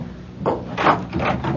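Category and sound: household object, door opening and closing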